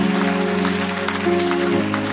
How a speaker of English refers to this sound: If you are clapping, clap, let me know I'm talking to you.